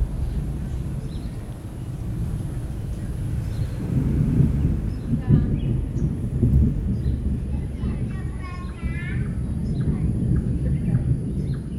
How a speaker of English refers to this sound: They have that amazing forked lightning, which I'd never seen before, which completely blew my mind. The thunder sounds like it's getting closer now.